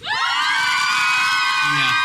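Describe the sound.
A live audience at a Harry Potter trivia show erupts in loud cheering and shouting. Many voices whoop and yell together in a sustained, full burst from start to finish.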